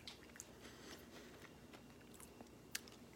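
Someone bites into and chews a crunchy Crunch Bar, a Halloween-candy-size chocolate bar, with scattered sharp crackles and snaps over a soft, steady chewing sound and no talking.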